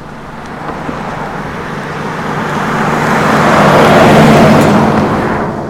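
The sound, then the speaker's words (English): Steady roar of heavy traffic on an eight-lane interstate, a broad wash of tire and engine noise that swells as vehicles pass, then eases slightly. No voices. “From cars passing by on an eight-lane interstate, to the harmony of an orchestral performance, to the serenity of nature.”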